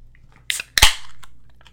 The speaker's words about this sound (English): You know what's fun? What's that? I said I was going to wait to open this beer so I could do a crack in the mic. Oh, yeah. So. Well, I could do a crack in the mic, can't I?